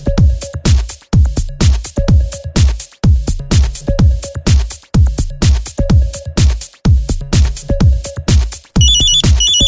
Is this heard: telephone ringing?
yes